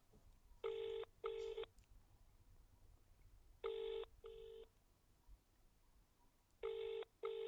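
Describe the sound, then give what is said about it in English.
A phone ringback tone repeats in pairs of short electronic bursts, ring-ring, then a pause, three times over a faint background hiss, clear and steady with no voices. “It's ringing.”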